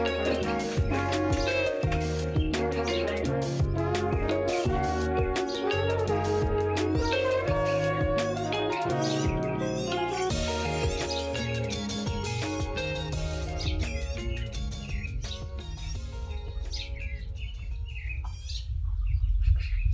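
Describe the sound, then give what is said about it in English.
Birds chirp and tweet steadily throughout in a local park, their calls layered over a dense, continuous backdrop of sustained tones with no talking. “I was really excited to head to my local park and try to see what birds I could find.”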